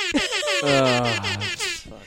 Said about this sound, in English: I heard I was supposed to do the air horn.